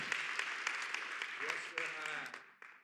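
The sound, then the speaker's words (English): A church audience claps their hands to the Lord in a dense, steady wash of applause, with voices calling out over it partway through before the clapping fades away at the end. “And if you agree with that, somebody say amen and clap your hands to the Lord.”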